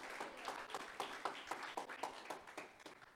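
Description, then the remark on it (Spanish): An audience applauds the Lord during a sermon, many hands clapping in a dense, fairly steady rhythm with regular accented beats, sustained and soft throughout with no voices standing out. “Dele un aplauso fuerte al Señor, a su nombre.”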